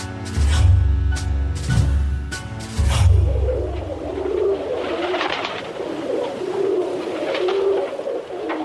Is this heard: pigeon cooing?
yes